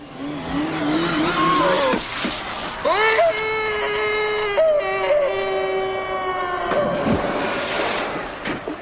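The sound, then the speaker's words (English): A man in a movie lets out a long, wavering, high-pitched scream that rises and holds as he slips off his motorcycle and falls through cracks, broken by a sudden splash as he hits the water. A rushing, noisy background runs underneath throughout. “Instead of, like, putting it down and walking away, he slips, he falls, and then he falls through the cracks into the water, and he makes one of the best sound effects that I think I've heard in a movie in the longest time.”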